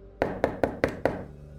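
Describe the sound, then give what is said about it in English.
Five loud, evenly spaced knocks on a door with a circular frosted-glass window, each a sharp thud with a brief resonant ring, struck in quick succession by a police officer. “They walked to the door and Phil knocked loudly.”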